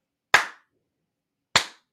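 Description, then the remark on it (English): Two sharp hand claps, spaced a little over a second apart, each a crisp smack with a short decay into silence. “Oh, it wasn't that bad, actually, but I should probably clap.”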